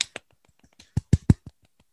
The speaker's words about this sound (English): So round of applause for me, please.